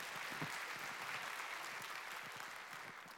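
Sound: audience applause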